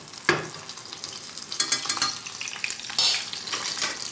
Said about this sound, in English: Can you hear the pan? That's me swirling, kind of shaking it. Actually, I'm like shaking. And as I'm shaking, the oil's sort of bubbling up over my cutlets.